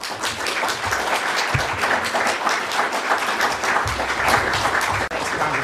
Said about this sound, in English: Thank you very much, Congressman. Please give him one more round of applause.